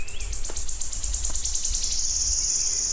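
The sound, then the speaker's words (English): A wood warbler, about six feet away, sings a high, thin run of ticking notes that speed up and merge into a sustained shivering trill lasting a couple of seconds, with a low background rumble throughout. “That would be about the best ever recording of wood warblers I'll ever get.”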